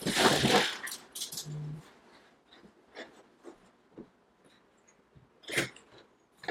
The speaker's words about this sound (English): It was the wind. Oh, okay. The door wasn't shut all the way.